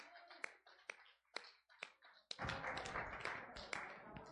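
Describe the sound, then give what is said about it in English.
A church audience claps its hands for the Lord as people make their way back to their seats: a few sharp, evenly spaced single claps come first, then the whole crowd joins in a loud, dense burst of sustained clapping. “All right, let's give the Lord a hand clap while you make your way back to your seats.”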